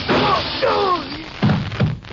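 A gunshot fired through a window blasts out a lamp: two short, heavy thuds about half a second apart follow a couple of rising and falling vocal exclamations, then the sound quickly fades.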